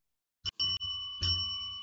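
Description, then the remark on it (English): A small bell rings three times, two quick strikes close together and a third a moment later, each bright metallic tone lingering and ringing out clearly with no one talking. “Story bells.”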